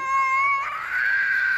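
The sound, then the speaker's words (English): A toddler having a meltdown wails loudly in one sustained, high-pitched cry that shifts pitch partway through, with no talking over it. “Toddler meltdown.”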